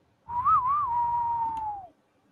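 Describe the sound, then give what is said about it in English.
A clear, sustained whistled melody line with a quick wavering turn before it glides downward and fades, carried over a low rumbling accompaniment: a famous film theme playing on a TV in a living room at about 2 or 3 in the morning. “And there's this famous whistle.”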